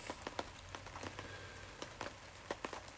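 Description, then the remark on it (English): Steady rain patters down on a hard surface, with scattered sharper drops tapping over a soft continuous hiss. No voices. “Lovely rain, lovely bird song.”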